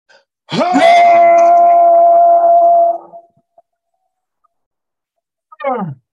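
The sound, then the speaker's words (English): A group of men in an audience lets out one loud, sustained roar lasting a few seconds before it fades, followed after a pause by a short, falling vocal cry. “Men are going to roar. We're provoking the men. We're provoking men to roar.”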